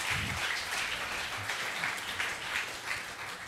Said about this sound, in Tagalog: Nako, mahina yung palakpak, mahina yung palakpak.